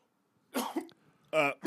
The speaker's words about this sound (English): He turns just in time to cough directly into the camera.